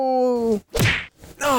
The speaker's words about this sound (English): Take that, and that, and that. Ouch! Stop slapping me! Get off of me!